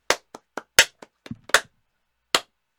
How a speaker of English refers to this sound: Yay, it's our first episode. Give us a clap.